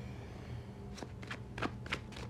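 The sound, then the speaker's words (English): Tarot cards being shuffled, five quick papery riffles in an uneven rhythm over a low background hum, with no one speaking. “All right, I think I've shuffled this enough.”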